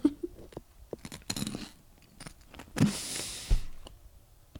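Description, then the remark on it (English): Crunchy food being chewed, with a series of sharp, irregular crackling bites and a louder burst of crunching midway, no talking. “That's too crunchy.”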